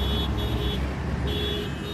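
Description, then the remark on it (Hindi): A car engine rumbles steadily as the vehicle drives away from a bridge over the Yamuna toward Connaught Place, a low continuous roar with faint, intermittent high-pitched tones above it and no voices. “वो वापस गाड़ी में बैठता है और गाड़ी कनॉट प्लेस की ओर दौड़ाता है।”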